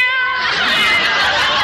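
A cat named Minerva lets out one long, drawn-out meow, loud, its tone bending and wavering as it stretches into an insistent, whining yowl.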